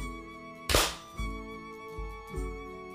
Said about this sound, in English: Yep, I think we got plenty of silence in that. So let's just go ahead and clap sync on three. One, two, three.